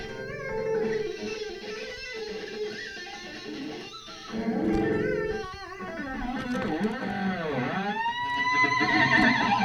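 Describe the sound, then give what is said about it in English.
An electric guitar plays loud, distorted notes with whammy bar dive bombs, the pitch swooping sharply down and bending back up in squealing, almost whinny-like sweeps, with no talking. “Yeah, give me a longer dive bomb.”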